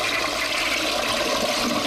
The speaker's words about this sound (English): So when guests come over, they're just shocked? They think it's a regular toilet. They'll get up and they'll flush it and it'll go... Boom!